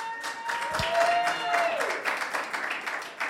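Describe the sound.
An audience applauds, with dense, steady clapping running through the whole few seconds at a fairly strong level, and a few voices and cheers mixed in.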